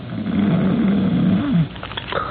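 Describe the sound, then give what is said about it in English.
A loud snore: one long, rasping, drawn-out breath lasting over a second that ends abruptly, followed by quieter breathing noise, from a big, heavily muscled, early middle-aged man lying in a bed beyond a curtain. “From beyond the curtain and the other bed in the room, from the big, heavily muscled, early middle-aged man in it, comes a rhythmic and ear-shattering snore.”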